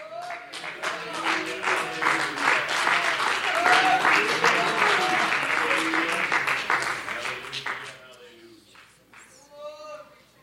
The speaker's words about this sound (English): Let's stand together and give the Lord a hand clap of praise.